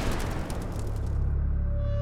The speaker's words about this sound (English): A sudden explosion sent a wave of fire over Ra's body. Then, nothing.